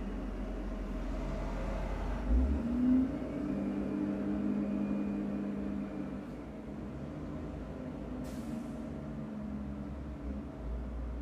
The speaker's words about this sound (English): Sorry, that's a truck.